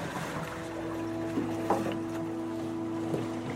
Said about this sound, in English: Danielle jumps out into the cold water and drags the seaplane onto the rocky shore by a rope